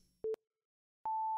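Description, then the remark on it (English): Two loud electronic censor beeps: a short, lower-pitched tone, a pause of silence, then a higher, steady beep that holds until the end. No voices are audible. “You're gonna have to do a beep over the over that.”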